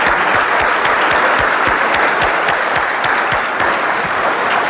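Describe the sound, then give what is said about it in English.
Sustained audience applause fills the whole stretch, a dense, steady roar of many hands clapping with no voices over it. “It always touches me, and I think we as a community are blessed to have him as part of this, and I'd like to offer a round of applause”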